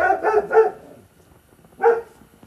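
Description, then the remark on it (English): A dog barks in a quick burst of about three sharp barks, pauses, then lets out one more bark, moderately loud with no talking. “Dump trucks and dogs barking.”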